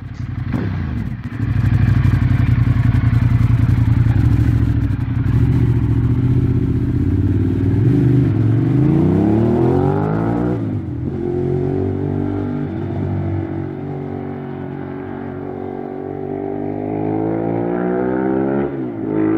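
A loud Ducati Monster 1200S L-twin motorcycle engine idles with a deep, lumpy burble, then revs up in rising sweeps and drops back, repeating with a throaty aftermarket-exhaust bark.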